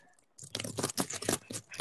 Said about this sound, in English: What's that? I'm typing. Oh, okay. Typing intensifies. That sounds like pretty loud typing.